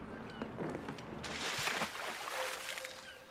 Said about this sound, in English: They couldn't get the boat, the motor working, could they? No. No, they couldn't. Now they have to row it.